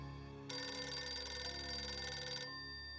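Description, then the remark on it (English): A telephone bell rings once in the Company B2 orderly room at West Point on a January 1950 afternoon, in a single sustained burst of about two seconds, loud, with a shrill metallic jangle that cuts off abruptly, leaving a quiet low hum. “That afternoon, Cox received a phone call from a man claiming to be his old friend.”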